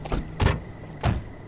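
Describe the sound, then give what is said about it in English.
Car doors of a Chevy thump shut in quick succession as people get in, a light knock followed by two heavier thuds about half a second apart, with no talking and a faint hum beneath. “Let's get into that Chevy.”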